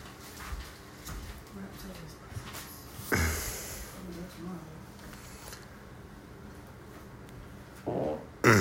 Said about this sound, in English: You nasty. My girl farted.